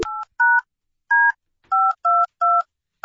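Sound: telephone dialing tones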